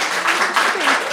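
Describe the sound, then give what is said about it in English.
An audience bursts into steady applause, dense overlapping clapping that holds at an even loudness throughout the short burst, with faint voices mixed in underneath. “So everyone give her a round of applause.”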